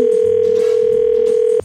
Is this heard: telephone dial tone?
yes